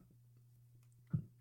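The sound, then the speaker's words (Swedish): A single short, low burp breaks a quiet stretch near the end, sitting over a faint steady hum. No one talks. “Jag kommer rap också.”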